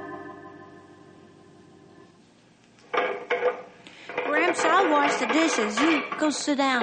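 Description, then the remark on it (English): Dishes clink and clatter in a sink as they are washed after a low steady hum, the sharp knocks continuing beneath voices that start talking. “Oh, that's all right, son. I'll finish the dishes.”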